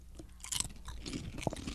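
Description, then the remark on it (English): Crunching as a chip is bitten and chewed, a few quick brittle crackles in an irregular rhythm, fairly quiet and with no talking. “Crunch, crunch.”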